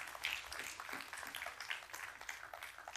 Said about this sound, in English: You may clap right there because that's really good.